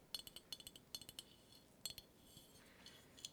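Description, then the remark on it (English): A standard quart-size Golden Harvest brand glass mason jar clinks and taps as it is handled, a quick series of bright, ringing knocks followed by a few scattered ones, fairly quiet, with no talking. “It's just your standard quart size mason jar.”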